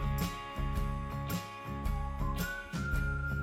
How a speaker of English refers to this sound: A whistle solo. Uh-huh. I cannot whistle this well, so I really like this.